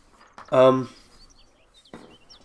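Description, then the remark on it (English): A single loud, harsh squawk rings out, followed by faint, scattered high chirps and a quieter second call near the end. “that was an odd bird.”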